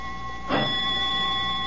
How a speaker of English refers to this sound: Suddenly, Katrin is startled by a frightening sound. Only the doorbell.